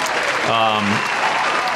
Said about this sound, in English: Crowd is going absolutely crazy.